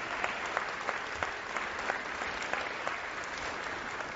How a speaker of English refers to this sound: You can clap. That's awesome.